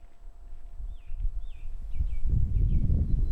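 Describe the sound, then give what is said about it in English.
Birds chirp and sing in short, repeated swooping notes in the trees all around, fairly faint, over a steady low outdoor rumble with some rustling and movement. “And we can hear birds singing in the trees all around us.”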